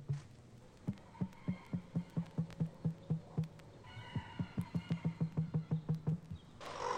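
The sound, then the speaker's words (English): An emu's deep, resonant thumping call, generated in its breast: a steady series of low, booming pulses, about three per second, in two long runs separated by a brief pause, with no one speaking. “And this strange thumping the emu generates in its breast sounds like nothing else in the world.”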